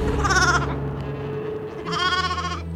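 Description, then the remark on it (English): Two loud, wavering bleats from sheep in a grazing flock ring out, one at the start and another after a short pause, over a steady low rumble of outdoor background noise. “scanned the walls above, making sure all was clear as the sheep grazed.”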